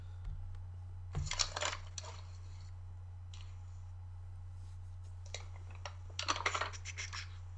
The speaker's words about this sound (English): Is that typing I hear? That's me thinking.